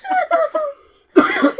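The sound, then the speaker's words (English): A person coughs: three quick, throaty coughs in a row, a brief pause, then one louder, harsher cough that trails off. No talking. “I'm going to be coughing all episode still.”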